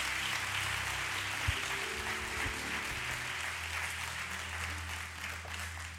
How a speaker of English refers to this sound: Come on, can you give Jesus the best round of applause? Let's stand here.